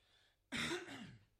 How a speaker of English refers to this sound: Gosh, stop coughing. I'm sorry, I've got a really bad... I'm just going to... Wet that throat with a bit of wine.